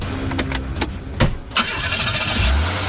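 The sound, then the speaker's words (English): A few sharp mechanical clicks and clunks give way to a car engine cranking and catching, its low rumble swelling near the end. No one speaks. “Ooh, yeah, chase after me in the car”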